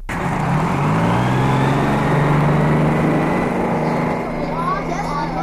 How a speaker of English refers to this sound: Well, we are on our way in my new school bus to deliver all of these children safely to school.